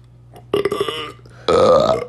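Two deliberate burps made on command by sucking air in and letting it out, in quick succession and loud, the second longer and deeper with a rising, croaking tone. No talking, just a faint low hum underneath.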